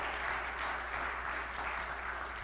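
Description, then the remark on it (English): A crowd applauds the RVAA students steadily, a dense wash of many hands clapping at an even level throughout, with no voices breaking through. “And in fact, if we could one more time just give a nice round of applause to our amazing RVAA students.”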